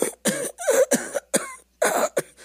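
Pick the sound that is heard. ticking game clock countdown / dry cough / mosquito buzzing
dry cough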